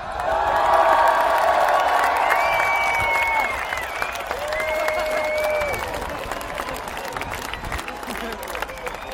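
A crowd claps and cheers loudly for a band, with high whoops and sustained whistles rising above the steady roar of applause, which eases slightly toward the end.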